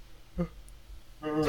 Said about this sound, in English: Okay. Don't yawn. You're gonna make me yawn. I know. I'm trying to sit up and wake up.